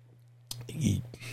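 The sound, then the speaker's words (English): A single sip from a drink, a soft slurp followed by a low gulp and a few faint mouth clicks, heard over a steady low electrical hum with no talking. “Let me take another sip just to clear my throat.”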